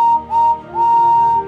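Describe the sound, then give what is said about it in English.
A steam engine whistle blows in three bursts, a short toot, another short one, then a long sustained blast, loud with a steady tone and rich harmonics: the whistle of Henry the Green Tender Engine, the number 3 engine on Sir Topham Hatt's railway. “Henry is the number 3 engine on Sir Topham Hatt's railway and has a whistle that sounds like this.”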